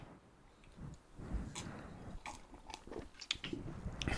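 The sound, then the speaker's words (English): Someone gulps a sip of rice IPA beer from Dirty Ball Brewing Company: quiet wet swallowing and small mouth clicks in an uneven run, with no one talking. “Let's take a quick gulp, because I'm a little parched.”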